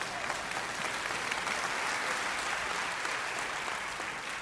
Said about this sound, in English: One person clapping right over here. Thank you.